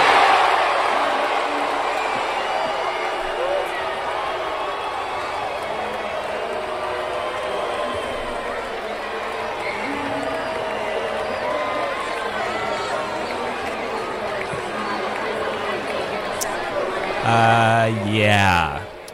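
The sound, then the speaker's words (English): A large crowd reacts to the Charlotte Hornets' draft pick with a dense, steady wash of overlapping voices, murmuring and groaning in disappointment, swelling near the end into a louder, drawn-out collective groan. “I think it's safe to say you can hear that sound and know it wasn't resounding cheering.”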